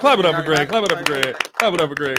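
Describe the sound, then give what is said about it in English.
A few scattered hand claps, sharp and irregular, break through over a sustained voice that hums or chants throughout, with a brief pause in the middle; the clapping is for guest Greg Gabriel. “Clap it up for Greg.”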